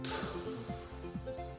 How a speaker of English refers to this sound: That was like a door opening or something.